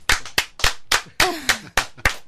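Brief applause: around eight sharp, evenly spaced claps in a steady rhythm, loud and crisp, with a short vocal whoop rising partway through.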